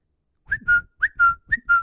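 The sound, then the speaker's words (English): A whistled text-notification tone, a quick upward chirp followed by a steady held note, sounds three times in rapid succession, fairly loud and alone. “This is how much he was getting texted with that dumb sound.”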